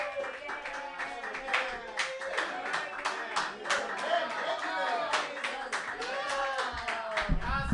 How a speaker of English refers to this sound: All right, keep clapping, because I'm just going to do just a couple seconds. Yay, me, yay!